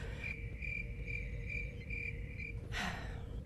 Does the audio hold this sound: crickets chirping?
yes